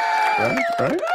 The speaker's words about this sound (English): Right, look at this guy. A little bit of applause there.